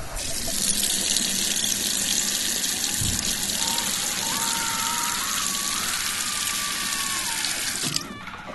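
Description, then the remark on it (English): A tap runs steadily into a bathroom sink at the Marriott, a dense continuous hiss of pouring water with a faint tone rising as the basin fills, before the flow cuts off near the end. “It's the haunted bathroom at the Marriott. Man drowned in that sink.”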